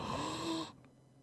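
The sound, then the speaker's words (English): A single sharp, breathy, excited gasp with a faint voiced edge, lasting well under a second before cutting off into near silence. Fairly loud, with no talking. “It was just a gasp because I was super excited.”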